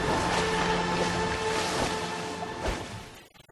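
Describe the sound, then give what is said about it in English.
Broad, steady wash of water sound like waves or a boat moving through surf, with wind buffeting and a faint steady hum underneath, then cutting off abruptly at the end. “Water.”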